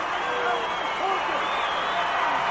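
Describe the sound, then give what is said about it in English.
A crowd of more than 20,000 on its feet at the Boston Garden cheers as the Hulkster keeps the World Wrestling Federation Heavyweight Championship, in a steady, dense roar, with overlapping shouts and whoops rising out of the wash and no letup for the whole few seconds. “They're on their feet here. 20,000 plus in the Boston Garden.”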